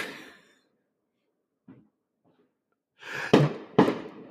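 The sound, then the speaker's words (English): Fireworks set off on the street right by a house: two sharp, loud bangs less than half a second apart, wrapped in crackling hiss, after a mostly quiet stretch with a faint rustle. “They're setting them all on the street right by our house.”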